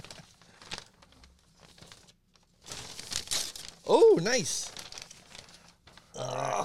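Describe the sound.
Gift wrapping paper crinkles and rips open in a few rustling, tearing bursts as a present is unwrapped, with a brief spoken reaction in the middle and another crinkly burst at the end.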